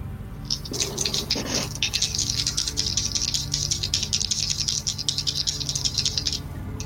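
Dice rattle continuously for several seconds, a dense run of bright clicking and clattering with a low hum underneath, ending abruptly as the dice settle.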